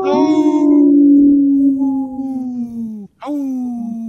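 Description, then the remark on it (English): A person imitates a wolf, singing along with an animated wolf, with a long, mid-pitched voiced howl that slowly slides downward for about three seconds, then breaks briefly and starts a second howl with a quick rising swoop. “If you're not watching us on social media, there's a animated wolf there that I try to sing with, and sometimes I make it, sometimes I don't.”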